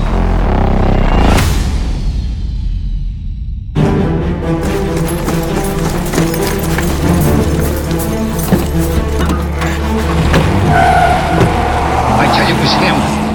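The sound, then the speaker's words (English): A getaway car's engine roars up loudly and the car tears away at speed, tires squealing, followed by a dense, continuous rush of motor noise that fills the rest of the moment. “Faster, boss, faster. Get away from here.”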